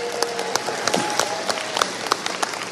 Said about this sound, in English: Thank you, Chris. And let's have another round of applause for the 2019 Audio Description Award winners.